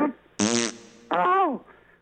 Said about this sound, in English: Hold on. Oh, my God. Did she just fart?